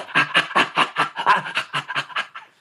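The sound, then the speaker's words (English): A person imitates the laughter of a tickled chimpanzee with a quick run of about a dozen breathy, rhythmic pants, steady and fairly loud, trailing off at the end. “If you tickle a chimpanzee, it makes its own special kind of laughter. In fact, I can imitate it for you.”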